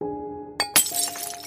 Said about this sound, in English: I held the bottle up and broke it with a blow of the hammer upon the side.